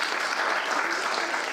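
An audience claps together in a steady, dense round of applause, a continuous crackle of many hands that stays loud and even for its short duration.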